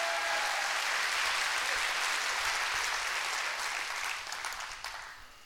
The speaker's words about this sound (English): Nobody like Jesus. Can we give him a hand clap today?